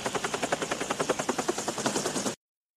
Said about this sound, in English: And a helicopter lowers a ladder and they both grab onto this ladder and they lower them both to the ground.